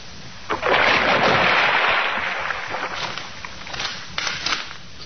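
A heavy splash as a woman's body is dumped into a river, followed by several seconds of churning, bubbling turbulence that slowly settles, with a couple of smaller sloshes near the end. No one speaks.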